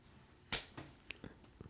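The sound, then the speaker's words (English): A sharp slap of a hand on a knee rings out once, used as an answer buzzer in a quiz game, followed by a few faint, softer taps and clicks. “Yeah, we'll do a knee slapper.”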